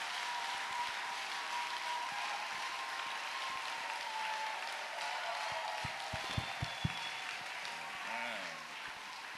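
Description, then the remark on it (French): An audience applauds for themselves, a dense wash of many hands clapping at an even level, with a few sharper claps standing out near the end and faint voices mixed in underneath. “No, clap for yourself.”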